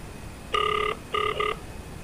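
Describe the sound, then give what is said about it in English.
An outgoing phone call's ringback tone, placed from a second SIM card, purrs in two electronic bursts, one long and one slightly broken, heard clearly over faint background hiss with no one speaking; the call goes unanswered. “Okay, his phone is all it's not answering.”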